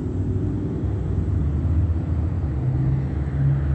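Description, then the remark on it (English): A heavy city bus engine idles and rumbles, a steady low drone with slight shifts in pitch, as the Route 87 bus pulls up and eases to a stop at Euclid Avenue and Holt at 9:12 a.m. “have Route 87 arriving right now at Euclid Avenue and Holt at 9:12 a.m.”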